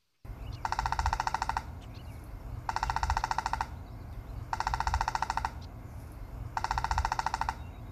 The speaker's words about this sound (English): Yeah, and just for an example, why don't we go ahead and play a downy woodpecker. And it's call and it's drumming code.